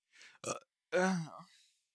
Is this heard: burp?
yes